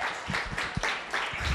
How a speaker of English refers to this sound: Somebody clap your hands and praise the Lord.